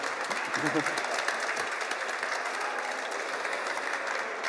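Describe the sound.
A steady round of applause, many hands clapping in a dense, even wash of sound that holds at a fairly constant level for several seconds, with a brief murmur of voice early on.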